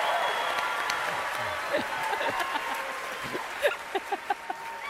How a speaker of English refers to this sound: Well, this is an important point. Yeah, let me get my applause.